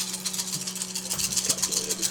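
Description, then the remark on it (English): A steady rattling clatter of many dice tumbling together, bright and busy with rapid overlapping clicks throughout, over a low electrical hum, with no talking. “That's a lot of dice.”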